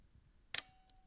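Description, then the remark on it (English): The cocked shutter of a wound film camera fires once with a sharp mechanical snap, followed by a faint small click and a thin lingering tone. “Okay, so it's wound. Shutter's cocked.”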